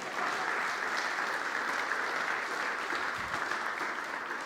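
Steady, dense clapping from a large audience fills the whole stretch at an even, sustained volume, with no voices rising above the applause.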